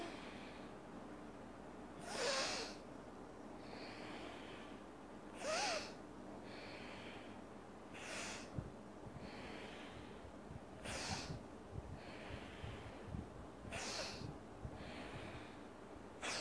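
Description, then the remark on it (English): Slow, deliberate nasal breaths through the right nostril during a breathing exercise, done three times, repeating roughly every three seconds as airy, hissing inhales and exhales, with a quiet background and no talking. “Then, now right nostril I'm going on.”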